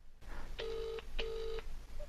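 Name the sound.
telephone ringing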